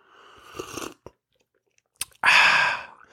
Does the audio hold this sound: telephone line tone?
no